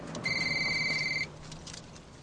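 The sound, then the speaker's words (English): A big brick cell phone rings with one steady, high electronic tone lasting about a second, loud, then cuts off, leaving faint background hum. “You gonna get this or what? Picks up a big brick cell phone here.”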